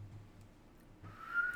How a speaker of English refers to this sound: I couldn't whistle well, sorry.